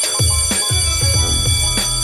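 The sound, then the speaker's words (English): A bell rings in a rapid series of about six bright, clanging strikes, each leaving sustained high metallic overtones that blend into a continuous shimmering ring. No voices. “And as always, there's the bell.”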